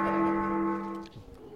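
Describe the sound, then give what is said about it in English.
A single bell rings out with a strong, sustained tone and rich overtones, ringing steadily before fading over about a second and a half, with faint murmuring at the end. “Somebody go, whoever's bonging that bell, go hit them in the head for me.”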